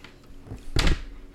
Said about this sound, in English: Yeah, bang the table. Think it hurts her hand when she just slaps the table with, like, this part? Like, that part hurts.